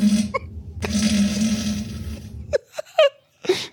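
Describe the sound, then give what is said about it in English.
A recorded fart played back: a long, rumbling fart with a low buzzing tone and a hissy, airy edge lasting over two seconds, followed by several short, higher squeaky puffs after a brief break. “It's the Fart of the Fart of the Week.”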